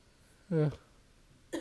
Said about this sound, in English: I was like, I know that wasn't on purpose, but I was like, that cough mad shady.